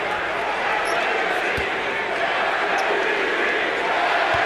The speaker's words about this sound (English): Crowd chanting MVP. Has never won it. Maybe this is the year.